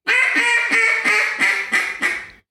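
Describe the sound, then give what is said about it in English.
A duck call blows a run of about seven fine hen quacks in a steady, even rhythm, each one bright and nasal with a raspy edge, then stops; the caller uses the throat to hold the air down rather than pinching it. No one speaks. “Okay, let me hear the fine hen again.”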